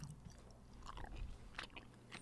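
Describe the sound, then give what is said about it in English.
Wet chewing and crunching of food, with irregular crisp bites and mouth sounds over a steady low hum, fairly quiet throughout, no talking. “Man, you were just mowing on those things.”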